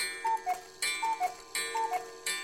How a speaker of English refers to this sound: Wait, where's my cuckoo sound effect?